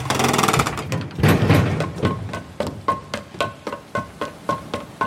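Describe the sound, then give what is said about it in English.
A heavy lighthouse door is opened with a loud, grinding scrape, followed by a steady series of evenly spaced clunks that gradually soften, with no voices present. “Get away from the door. I'm coming out.”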